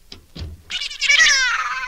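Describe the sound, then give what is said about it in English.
A cat lets out a long, drawn-out meow, rising and then slowly falling in pitch, preceded by a couple of soft thumps. The meow is loud and strongly harmonic. “Nice, Kitty. Hush.”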